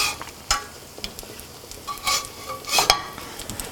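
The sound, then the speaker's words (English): Food sizzles and fries in a pan with a steady crackling hiss, broken by a few louder bursts of popping and spattering. No one speaks. “You can see them bubbling away.”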